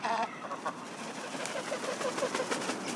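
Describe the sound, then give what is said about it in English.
Ibis honking while foraging: a run of short, nasal, mid-pitched honks and clucks repeating in an uneven rhythm, moderately loud over a steady hiss, with no one talking. “I love the sound of honking ibis while they're rummaging for food.”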